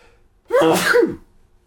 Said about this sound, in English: I think we have to start this again. Okay. Because I had to stop and sneeze. I don't know where that came from.